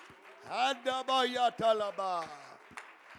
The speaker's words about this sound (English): Why don't you clap unto the Lord before you be seated?